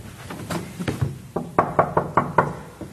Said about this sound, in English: She tiptoed down this famous gallery, and when she got to this door, just to my left-hand side, it was closed as per normal. Henry was on the other side saying his morning devotions, and when Catherine got here, she gently knocked on the door.